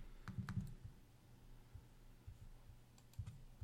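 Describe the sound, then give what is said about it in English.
Faint computer mouse clicks arrive in quick pairs, one double click near the start and another near the end, with quiet hum in between and no voices. “Oh, double clicking works.”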